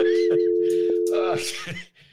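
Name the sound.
telephone dial tone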